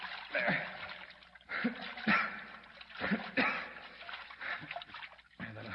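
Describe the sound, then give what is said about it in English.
Water splashes and sloshes in irregular bursts, moderately loud, like bodies churning in water as someone holds a limp person's head above water, with occasional low murmurs underneath. “I'll keep his head up above water.”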